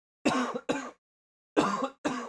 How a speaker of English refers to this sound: Coughing.